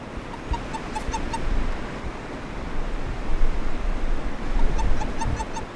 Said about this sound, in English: If you're out in the wilderness and you spot a toad, don't try to pick it up and rub its belly to hear that magical toad song for yourself.